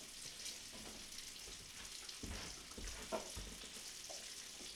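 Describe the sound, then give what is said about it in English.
A big bowl of kielbasa goes into a pan and sizzles and crackles, a steady hiss of frying fat with scattered pops and a few dull clunks and scrapes of stirring, no voices. “Big bowl of kielbasa going in here.”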